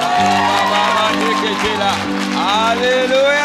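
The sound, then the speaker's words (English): An audience claps their hands in response to a revelation, amid a loud, dense wash of cheering and shouting voices, with a steady low droning tone running underneath throughout. “When a revelation comes, you have to clap your hands.”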